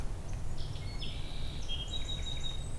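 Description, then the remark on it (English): A song sparrow sings faintly in early April, a string of thin whistled notes and short trills running across a few seconds, over a steady low outdoor rumble. “A song sparrow.”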